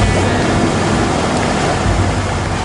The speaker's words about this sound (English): Ah, water. Good. Gives me a chance to play with something else I have on board, and that is sonar. Kid you not. He's now driving through water. It's crazy.